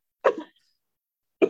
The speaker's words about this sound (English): Oh man, I'm sorry. That was a cough that made me burp.